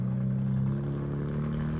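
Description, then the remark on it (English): Small motorized kids' cars hum along with a steady, buzzing engine drone that stays fairly even and moderately loud throughout, with no voices present. “Do they not like are they making cars for kids now?”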